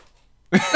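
After a moment of silence, a cat named Kitty lets out one short, loud, raspy meow, alone, cutting off abruptly.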